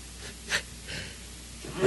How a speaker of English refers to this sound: Yeah, sneeze.